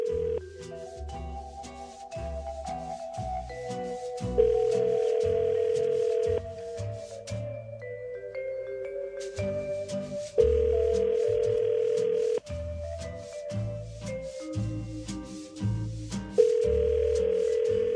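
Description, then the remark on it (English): An outgoing phone call to a radio contest listener rings unanswered: three steady ringback tones, each about two seconds long, recurring every six seconds over a light musical bed, with no voices. “Part of answering your phone with the winning phrase is answering the phone.”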